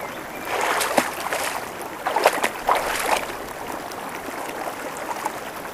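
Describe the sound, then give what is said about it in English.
Water splashes and gurgles, with a few louder sloshing surges over a steady watery wash, as someone moves through a flowing river during a meditation. No voices. “Today's meditation is going to take place in the river.”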